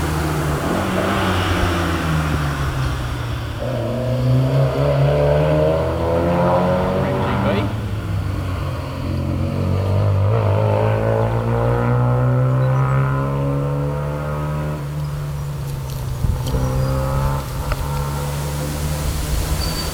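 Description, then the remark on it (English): An old sports car engine revs loudly and close by, its deep throaty note climbing and falling through several pulls of the throttle before settling into a steady rumble. “Looks like an old Triumph, TR2 or TR3 or something.”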